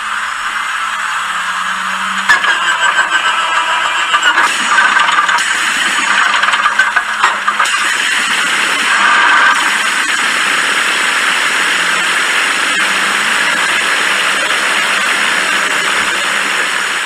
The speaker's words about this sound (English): And the Allison, by the way, for you Allison aficionados, I'm not dissing this engine at all. This is a really, really good American engine.